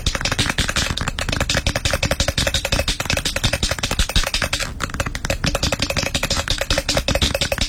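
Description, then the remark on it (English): A paint can is shaken hard and steadily, its mixing bead rattling in a fast, continuous clatter of sharp metallic knocks that lasts several seconds without pause. “It's the paint can.”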